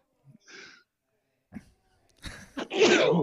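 A person sneezes once, close and loud, after a few quick breathy inhales building up to the explosive burst at the end.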